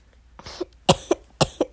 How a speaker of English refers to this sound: Sorry. Had a cough attack there.